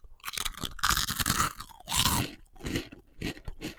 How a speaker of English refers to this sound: I'm going to do a frazzle now, just for the record, so other people can play along and just think and just marvel at your skills. So this is a frazzle popping in now.